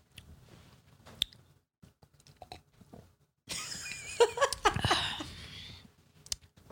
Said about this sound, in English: Sorry we're eating, guys.